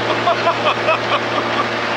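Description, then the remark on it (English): A pontoon boat motor drones steadily as the boat goes by, over a wash of water noise, with faint higher chirps scattered through the steady hum. “But then he's distracted from this train of thought as he sees the pontoon boat go by, and we just hear.”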